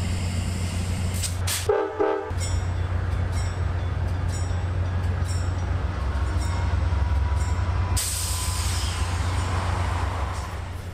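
A passenger train idles at the station in Beaumont, Texas, with a steady low rumble, a brief horn toot sounding near the start, then a rising hiss of air as it readies to pull away toward Houston.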